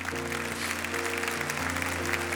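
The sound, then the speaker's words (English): A church audience claps together after people raise their hands to commit or recommit their lives to Christ, a steady, dense wash of applause that holds at an even level throughout, with a sustained low organ-like chord humming underneath. “Come on, church, can we clap for that?”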